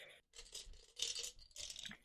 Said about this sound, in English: I'm picking up my dice for today.